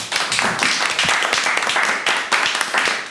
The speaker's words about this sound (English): So a big round of applause.